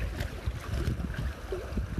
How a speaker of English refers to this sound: The stunning vibration that you hear is the water at Avalon Beach.